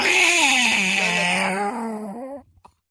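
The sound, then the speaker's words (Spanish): A human voice imitates cats fighting at night in Chihuahua, with one loud, drawn-out yowl that wavers in pitch for over two seconds, then cuts off abruptly, followed by a couple of faint clicks. “a veces nos despertaban en la noche gatos peleando. Sí, por eso mismo que estaban jugando. Así sonaban.”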